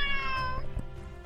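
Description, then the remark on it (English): A cat lets out a single drawn-out, whiny meow, fairly loud, its pitch sliding down before trailing off over a low background rumble. “I just fed you. What do you want?”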